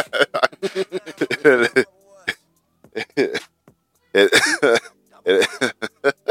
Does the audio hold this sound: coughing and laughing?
yes